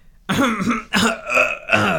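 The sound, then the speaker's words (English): A loud throat clearing in several rough, voiced bursts, a long gravelly one followed by three shorter rasps in quick succession, with no other sound around it. “Me clearing my throat.”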